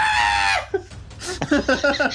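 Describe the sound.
A person lets out a high, strained, squawking scream in imitation of the X-Men character Rogue, held for about half a second, then breaks into choppy bursts of breathy laughter.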